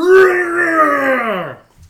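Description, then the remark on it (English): A voice imitates a demonic howling scream, one sustained, strained wail that starts loud and slowly sags in pitch before cutting off, heard alone. “the howling face of Typhon's suit, Sam Rockwell, manifests on it, like mouth stretched open demonically as it screams”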